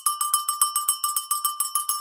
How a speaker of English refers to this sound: As you can hear, that is the Boris Bell.